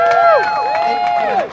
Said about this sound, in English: And I think, frankly, this crowd here today does nothing but indicate that we are dead serious and we are in numbers.